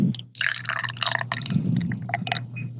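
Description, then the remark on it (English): Hazy beer glugs and splashes into a glass, a steady fizzy pour with bright bubbling textures and a low hum underneath, no voices. “So, give it a nice pour. It's a hazy boy.”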